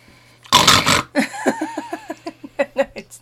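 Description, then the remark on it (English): A voice imitates loud snoring: one harsh, rasping snort, then a quick run of shorter grunting pulses with a wavering, nasal pitch. No words are spoken. “You're snoring most of the time. It's more like this.”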